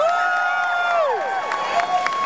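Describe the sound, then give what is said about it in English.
A large crowd cheers wildly in a steady, sustained roar, with high whoops and shouts gliding up and down above the din throughout. “Listen, the crowd out there, they love you. Can't you hear them? They're just going crazy.”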